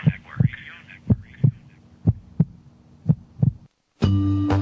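A heartbeat sound effect: four steady lub-dub double thumps about once per second, deep and prominent, followed by a short silence and then a sustained droning musical tone.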